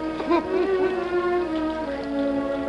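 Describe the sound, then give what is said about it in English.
Steady, heavy rain from a storm hisses without a break, with sustained, wavering musical tones layered over it for the whole stretch. “The storm continued throughout the next day, and the day after that again.”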